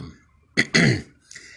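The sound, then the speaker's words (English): A fairly loud throat clearing: a short sharp catch followed by a longer rasping rumble, then a faint breathy tail as it trails off, with no talking. “See, I'm still clearing my throat every 5 minutes, and that's going to affect the quality of the broadcast.”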